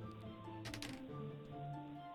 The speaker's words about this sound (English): Roll the dice, please, Game Master.